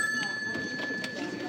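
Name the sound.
telephone ringing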